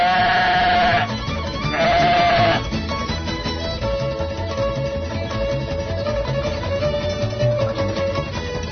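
A sheep lets out two loud bleats one after another, followed by a steady murmur of fainter bleating from the flock.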